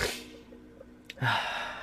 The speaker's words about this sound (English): Let's have a big ol' sip of coffee. It's so good. So good. Drinking from a Speedway cup. One of the refillable plastic ones.